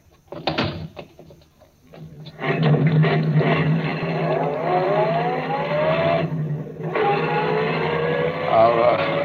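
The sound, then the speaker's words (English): A few clunks like a car door shutting, then an engine turns over and roars steadily as the car pulls away, briefly easing off before revving up again, loud. “get in the car. I'll drive”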